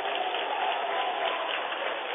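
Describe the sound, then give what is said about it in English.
A basketball crowd in Montpelier roars and cheers after Rashid Nakima's alley-oop dunk from midcourt, in a dense, steady wash of noise that holds at a loud level for the whole couple of seconds, with no single voice standing out. “Wow, does the crowd like that.”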